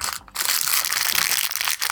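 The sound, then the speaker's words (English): Continuous crinkling of a plastic Halloween candy wrapper, a dense crackly rustle that stays loud for about two seconds with a brief dip near the start and short pauses toward the end. “Halloween candy. Tasty delicious stuff.”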